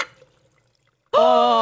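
Iced tea is poured into a glass close by, a sudden loud stream with a ringing, tonal gurgle, starting abruptly after a second of near silence.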